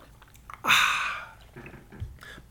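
A single slurping sip of water, a sudden airy hiss that fades over about a second, followed by faint mouth and swallowing noises.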